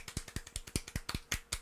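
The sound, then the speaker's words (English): Soft golf clap: quiet, crisp hand claps in a steady, fairly quick rhythm, about nine in under two seconds, with no talking. “A little bit of golf for. Clap. Golf clap.”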